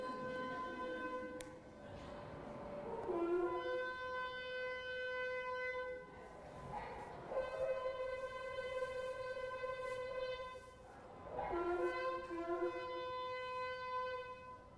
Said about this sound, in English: I'm going to show you a video of a rabbi on the pinnacle blowing the shofar